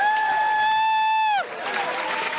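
A sustained, steady tone slides downward and cuts off, giving way to a brief burst of clapping and crowd noise that fills the last second.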